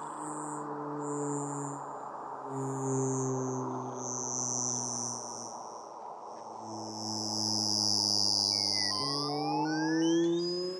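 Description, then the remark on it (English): Analog synthesizer music, created in the mid-1990s on a bank of analog synthesizers that ran nonstop in a studio for two or three months, with steady buzzing low drones that shift pitch in steps beneath thin, high whistling tones, ending in a flurry of rising electronic glides. No one speaks. “What you hear here ran in my studio for 2 or 3 months nonstop on a bank of analog synthesizers.”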